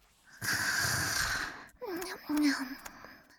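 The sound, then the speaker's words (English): A fairly loud snore from Sparky, asleep after collapsing onto a chair, likely voiced by a person imitating it: one long rasping inhale, then a shorter, throaty voiced exhale with a wavering pitch. “Sparky was snoring. He was really asleep.”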